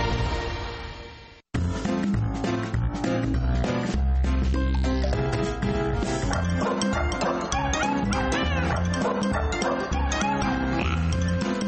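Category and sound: animal, dogs barking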